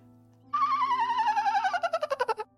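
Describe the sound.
A voice imitates a dolphin-like call: a loud, high, wavering squeal that slides gently downward, then breaks into a quickening run of about ten chattering pulses before stopping abruptly.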